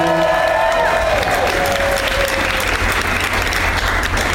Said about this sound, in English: They have no idea what's going on. They don't know what they're even applauding for.